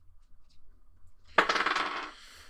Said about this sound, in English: So give me your environment roll. I think now is a good time for that D20 environment. Okay.